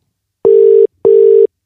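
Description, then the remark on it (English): Two loud, steady electronic ringback tones of an outgoing phone call that goes unanswered, each lasting about half a second with a short silent gap between, heard alone with no voices. “He ain't answering.”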